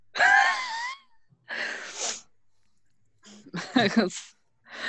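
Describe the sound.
A voice performs a series of loud, harsh coughs, about four raspy, strained bursts with short gaps between them, some with a wheezing, groaning edge.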